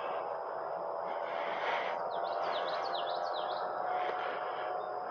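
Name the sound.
birds singing outdoors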